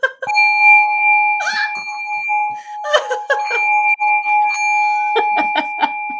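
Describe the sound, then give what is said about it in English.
A singing bowl rings with a steady, sustained pair of pure tones that hum on throughout, while short, sharp bursts of other noise break in over the ringing several times. “Where's your singing bowl? Don't worry. She's here.”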